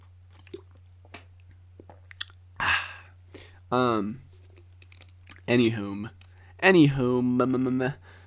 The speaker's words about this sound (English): I'm gonna take a sip of my water now. You can listen if you'd like. I will give you the chance to listen.